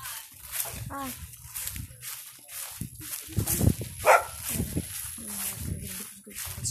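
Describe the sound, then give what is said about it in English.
A dog barks and whimpers in short bursts, with a sharp yip standing out midway, while people talk in the background. “You have a nice dog.”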